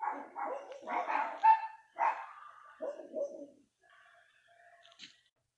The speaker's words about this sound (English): The dog started barking next door, so I had to pause it. Fucking loud ass dogs.